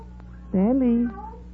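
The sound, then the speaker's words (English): A single drawn-out meow, rising and then sliding down, clear, with a steady low hum running underneath and no talking. “Here, kitty. Hey, Black, come over here.”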